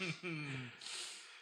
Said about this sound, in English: And I let out a big gasp.